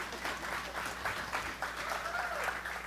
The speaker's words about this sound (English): One claps, everybody claps. You know the rules.